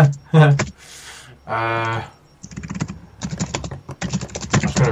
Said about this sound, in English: Jeez, who's smashing the keyboard? Me, sorry.